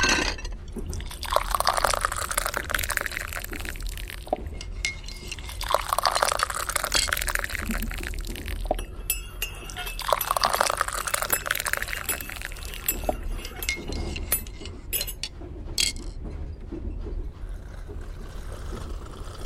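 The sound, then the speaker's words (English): Mariage Frères tea is poured into cups three times in a row, each steady stream rising in pitch as the cup fills, with a few soft clinks of china in between. “Ladies, tea is served.”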